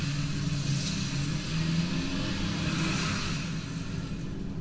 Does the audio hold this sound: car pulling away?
yes